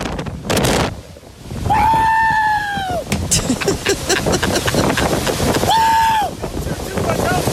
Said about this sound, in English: Yeah, the cheering doesn't sound as professional. They sound crazy.